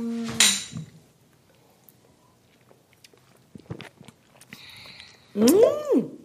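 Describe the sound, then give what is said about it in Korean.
A sharp, bright clink of glasses touching once, ringing briefly at a high pitch, followed by quiet handling noises and a short burst of voice near the end. “짠 하겠습니다.”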